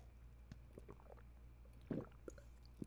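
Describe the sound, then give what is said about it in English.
Quiet swallowing sounds of someone taking large gulps of water: a few soft wet clicks, then one louder gulp near the end, with no talking. “Let me take a sip of my water.”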